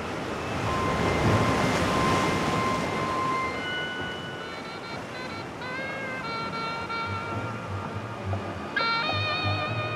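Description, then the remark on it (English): Steady, rushing ocean surf washes in continuously, a broad roar of waves rolling onto a shore, with sustained whistling tones sounding over it and a low rumble underneath. “He looked upon the harmless waves with animosity, but still the waves kept rolling in with roly-poly glee, regardless of the Tunkey too and even you and me.”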